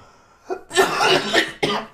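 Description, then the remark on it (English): A small cough followed by a heavy, raspy coughing fit, ending in one last harsh cough; loud, with no talking. “You ever take those coughs that just make you want to look at the cigar?”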